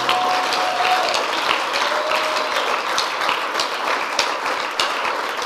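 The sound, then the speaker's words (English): A crowd claps steadily in a dense, continuous patter of many hands, with a brief faint tone sounding over it early on and no voices. “You see, if you are not married and you are clapping, clap so that God will give you a good woman.”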